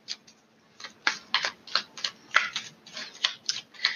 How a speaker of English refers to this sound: So, getting on with the reading, I'm shuffling the tarot mucha. I cannot guarantee that you will hear me shuffling the whole duration of this reading, but based off of faith, we will go from here.